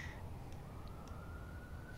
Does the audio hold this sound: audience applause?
no